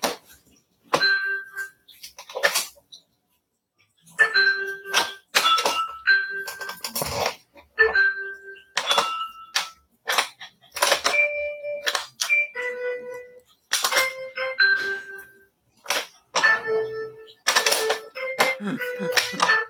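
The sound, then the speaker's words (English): A dog stands on the buttons of a smart music instrument made for dogs, playing solo and producing a halting string of short beeping notes at shifting pitches. Each note comes with a sharp click, falling in irregular bursts with brief pauses between. “This is a dog playing solo.”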